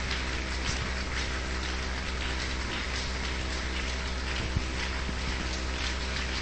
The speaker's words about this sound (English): Before we sit down, let's put our hands together and welcome our daddy in the Lord.